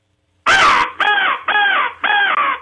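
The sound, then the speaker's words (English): A crow locator call is blown, used while walking logging roads later in the day: four loud, raspy caws in quick succession, the first harsher and noisier, the rest steady and nasal, imitating a cawing crow with no talking. “And as the day progresses, as you're walking logging roads, the crow call.”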